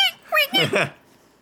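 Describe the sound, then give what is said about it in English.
A squeaky toy hammer gives three or four quick, high-pitched squeaks in a row, loud, each with a wavering, whiny pitch, then fades to near silence. “They start off with a squeaky hammer.”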